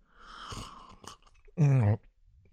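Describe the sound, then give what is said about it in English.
A wet slurping celebration sip from a drink, followed by a short, loud voiced 'ahh' of satisfaction, with a few small mouth clicks around it. “Celebration sip.”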